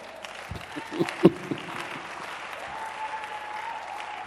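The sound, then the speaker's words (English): An audience at a religious sermon claps steadily, a dense wash of many hands with a few sharper, louder claps standing out near the start, without any talking. “I know your clapping is, let me be careful lest I blaspheme.”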